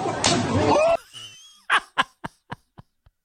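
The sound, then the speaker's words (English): A burst of loud, noisy commotion cuts off, then the sharp smacking impact of a punch lands, followed by several quicker thumps that fade steadily quieter as a man is knocked out and goes down. “He knocked him the fuck out.”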